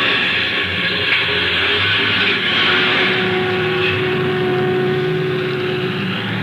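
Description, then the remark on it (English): A bus engine runs with a steady rumble and a broad hiss as the bus departs and swings out onto the highway, holding an even level throughout without pauses or voices. “Well, here we go, folks.”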